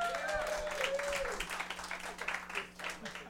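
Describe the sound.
Audience applause: dense, steady clapping from a crowd that fills the whole few seconds, with some cheering voices and a brief whistle-like tone mixed in early on.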